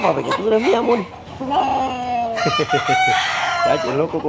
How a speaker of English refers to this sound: And this one, he said, picking up a regal red and black rooster, this one is my love.